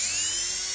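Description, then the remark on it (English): A dentist's drill whines shrilly as it grinds against glass, scratching an outline into the glass for engraving, a steady, high-pitched buzz lasting under a second with no one talking. “You scratch it out, then with a dentist drill. I'll put a little noise on for you”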